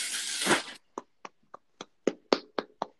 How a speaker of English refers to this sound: Sorry, I just clapped. Is that clapping or somebody laughing? Oh, no, I'm just clapping because LeBron just hit it through.